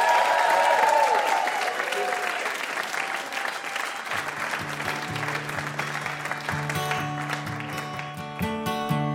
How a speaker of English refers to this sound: And having a huge round of applause for our VIP,